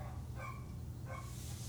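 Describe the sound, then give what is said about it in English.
Dogs bark twice, less than a second apart, sounding somewhat muffled over a steady low rumble, with no voices present. “I know you hear all these dogs going on.”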